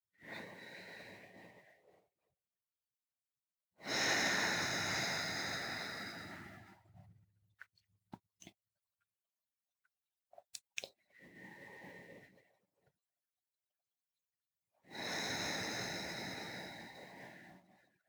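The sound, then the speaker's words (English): Slow, deliberate breaths of a person sitting and observing their breath: long airy inhales and exhales separated by pauses of silence, with a few faint clicks between them and no talking. “I'm not gonna beatbox breathing, I'm just gonna be breathing.”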